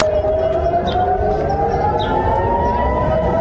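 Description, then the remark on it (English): A loud, sustained air-raid style rocket warning siren in Israel during rocket attacks wails steadily with a slowly rising pitch, filling the air continuously over a constant background rumble, with no voices. “Right, this for the better part of the week has been the sounds of sirens and warnings to the people of Israel as they have been hit with around 1,500 now rockets.”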